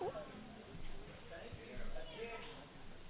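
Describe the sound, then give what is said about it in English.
A big cat meows a few times over a muffled, tinny phone line, the cries faint and thin beneath soft background voices and line noise. “there's a cat on the line somewhere.”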